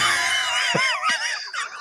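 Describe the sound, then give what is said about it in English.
A person lets out a shrill, exaggerated mock scream imitating onlookers watching a plane fall, loud, wavering and swooping in pitch for about two seconds without any words. “Fucking screaming all the humanity watching his plane fall.”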